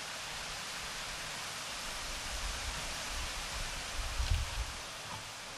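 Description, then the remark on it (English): A steady, continuous splashing hiss of liquid being poured out until none is left, demonstrating a drink offering, even in level, with a brief heavier gurgle toward the end and no voices. “Pour it out for God until there's nothing left. It's all gone.”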